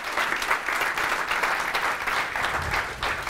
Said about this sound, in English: First of all, ladies and gentlemen, a little round of applause